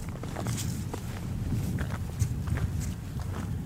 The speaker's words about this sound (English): It's below freezing and really windy, so I'm trying to carefully climb this hill that's covered with thick snow.